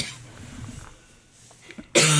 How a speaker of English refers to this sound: That's a COVID cough.